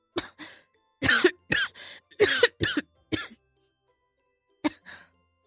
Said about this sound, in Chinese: 正低着头喝汤的老公却大力地咳嗽了起来。